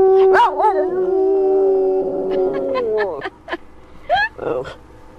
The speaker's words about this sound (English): This right here is President Lyndon Johnson and his dog, Yuki, singing a duet.